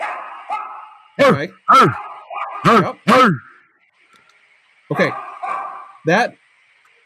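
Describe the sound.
A man doing his punching routine at a punching bag grunts loudly and sharply in short bursts that sound almost like a dog barking, coming in quick pairs and clusters over a low steady hum, with a brief spoken word.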